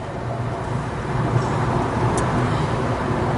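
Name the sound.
car driving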